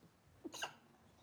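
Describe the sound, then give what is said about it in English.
A single quick, stifled sneeze, short and fairly soft, with a brief intake of breath just before the sharp burst, then quiet. “Bless you.”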